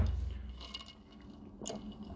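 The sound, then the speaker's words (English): Quiet wet mouth sounds of someone taking a sip of a drink, soft slurping and swallowing over a low hum, with a brief sharper click near the end. “So, I'm wetting my whistle again.”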